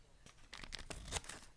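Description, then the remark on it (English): Scissors cut into a cardboard box to make a hole in it, in a quick series of scratchy, tearing crunches, fairly quiet, with no talking. “Yeah, I'm going to try and make one with a pair of scissors.”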